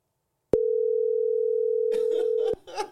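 A phone call rings out on speakerphone: one steady, loud ringback tone lasting about two seconds, with voices and laughter rising underneath near its end.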